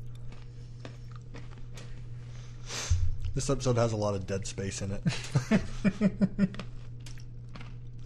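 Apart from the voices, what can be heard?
chewing crunchy food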